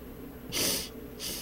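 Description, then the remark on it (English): Two quick, airy sniffs, the second one cut short, with no talking around them. “Sorry for sniffing.”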